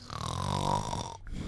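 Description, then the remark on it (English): A person imitates a snore with one long, loud, buzzy rasp drawn out for over a second, then breaking off abruptly. “Tell you what, I'll snore away that one, because I don't think that's...”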